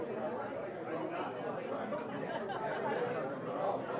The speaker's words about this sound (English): All right, we're here on the barge. Finally, we made it. Wow, this is some crowd, at least 90 people or 80 people in here.